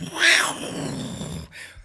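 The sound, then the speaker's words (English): A person growls out a loud, raspy imitation of a tiger roar, one rough burst that trails into a low rumble before cutting off. “Oh no, watch out! It's a tiger!”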